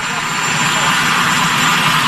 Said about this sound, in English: First of all, always love when he conducts his interviews in front of the helicopter, because we always get such great audio quality of that clip.